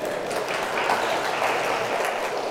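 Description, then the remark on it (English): A crowd applauds steadily, dense overlapping claps forming a continuous, fairly loud wash of sound with no voices standing out. “That's nothing to applaud.”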